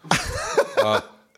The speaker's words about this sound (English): heckling from the back. Heckling with the sneeze.